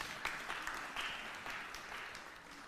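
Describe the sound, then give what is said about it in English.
A round of applause: many hands clapping in a dense, steady patter with a few sharper claps standing out, fairly quiet and lasting the whole stretch without any talking. “Big round of applause for...”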